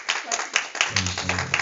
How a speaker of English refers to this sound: Give God a good hand clap of praise tonight as you go.